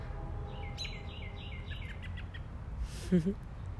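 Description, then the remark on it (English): Birds tweet outdoors in sunshine, flying around and calling to each other in a quick run of high, bright chirps against a steady background hush, followed by a short low murmur near the end. “There's a lot of bird activity going on around me. They're flying all around and they're tweeting to each other and have a lot going on.”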